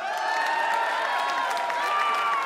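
Steady applause with a crowd cheering for quiz game contestants, a dense wash of clapping and raised voices that holds at an even, fairly loud level throughout.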